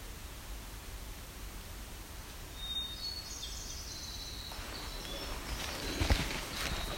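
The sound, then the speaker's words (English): A faint Nashville warbler song, a brief run of high thin notes partway through, nearly buried under steady outdoor hiss and wind noise; no voices. “So that may be a Nashville warbler.”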